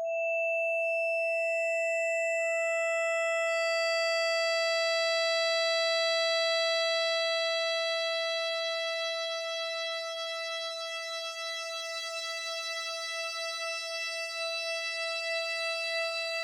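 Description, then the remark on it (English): A sustained synthetic tone built from pure sine partials, imitating a violin note with a steady fundamental and stacked harmonics that fade in one by one, slightly wavering later on. “Build a violin out of sine waves.”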